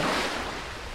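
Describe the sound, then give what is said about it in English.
A steady, hissing wash of crystalline waves breaking against the shore, slightly stronger at the start and then settling into a constant broad rush, with no voices. “He finds his balance and soon gets in the groove, standing up confidently and navigating the crystalline waves.”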